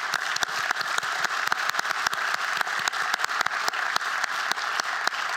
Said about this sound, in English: a round of applause for that.